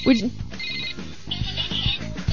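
A telephone rings with bright, trilling bursts, steady, while low murmuring sounds sit underneath.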